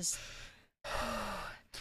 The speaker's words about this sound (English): Heavy breathing here.